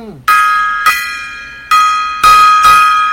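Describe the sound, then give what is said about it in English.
A gong is struck five times at an uneven pace, each hit loud, with bright metallic ringing that sustains and overlaps the next strike. No one speaks. “Gong time.”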